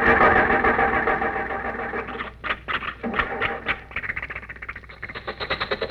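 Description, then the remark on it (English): A car engine flooded with too much gas grinds and sputters in uneven, coughing bursts, then catches and settles into a quick, steady mechanical chugging. No one speaks. “It started. It started. Off we go into the wild blue yonder.”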